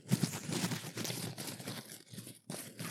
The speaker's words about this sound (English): we have put everything on old school, little tiny pieces of paper into a hat, and we're going to pick the winner today. Are you guys ready? I'm so excited. Do you hear the papers rustling in the...